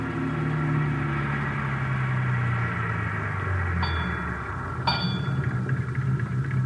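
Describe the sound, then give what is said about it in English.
A car engine hums steadily as the vehicle drives up to a service station on Vermont Avenue in the rain, then its pitch sinks as it slows and comes to a halt, followed by two short sharp clicks and a lingering low idle. “we drove to the service station on Vermont Avenue where Best was supposed to be employed”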